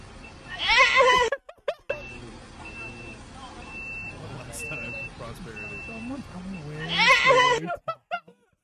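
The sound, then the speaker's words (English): Two loud, high-pitched bleats like a baby goat's, one near the start and another near the end, with quieter voices talking in between. “Sounds like a baby goat.”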